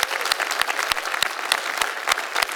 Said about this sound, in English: Why don't we here in Green Bay give a warm welcome of applause to those that are joining with us online at the other campuses as well. Let's welcome them.